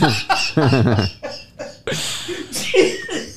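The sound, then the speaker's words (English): Laughter gives way to a few harsh, breathy coughs in quick succession, loud, with no one speaking over them. “Oh my God, that made me cough.”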